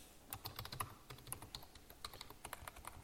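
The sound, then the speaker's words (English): Rapid, irregular clicking of keys on a computer keyboard as someone types up a tweet, steady for a few seconds, with no voices over it and a faint low hum underneath. “I'm actually typing this up on Twitter now.”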